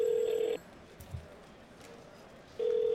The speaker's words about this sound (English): You call the house phone.